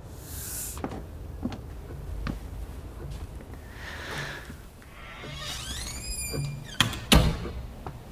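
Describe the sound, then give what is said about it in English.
A door at Baker Street creaks slowly open with a drawn-out, wavering hinge squeal, followed by a couple of sharp thuds. “The door is open.”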